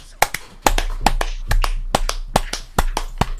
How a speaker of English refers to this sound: Clap, boys. Time to clap.